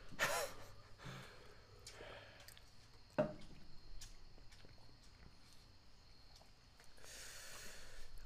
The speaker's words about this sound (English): I'm gonna be real with you guys. I've never experienced anything like this. I'm breathing heavy. I apologize for that.